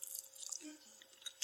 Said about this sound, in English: You're gonna be like, man, this fool's chewing food. This shit's nasty. Let me take one bite of this broccoli, and I got a dope story right after this bite. Hold on.